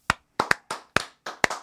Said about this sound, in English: Let's welcome him to the pod with a big three-person round of applause.